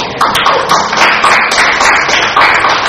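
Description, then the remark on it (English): An audience claps hands in praise of the Lord, a loud, dense patter of many hands with a roughly steady rhythmic pulse running throughout, no single voice standing out. “So you can just give the Lord a shout and a hand clap of praise for that.”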